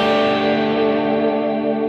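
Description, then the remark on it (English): A sustained electric guitar sus4 chord rings out steadily, washed in delay and reverb so the notes shimmer and overlap, with no voices over it. “the sus4 right there sounds really nice too.”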